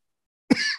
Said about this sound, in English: I've caught the cough through the microphone. Oh boy. I'm sorry.